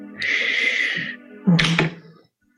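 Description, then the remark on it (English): Dice are rolled for a survival check, coming up 18: they rattle steadily in a cupped hand for about a second, then clatter onto a hard surface in a quick burst of sharp knocks that fade into silence. “Sure, make a survival check. All right, let's see which roll, which way.”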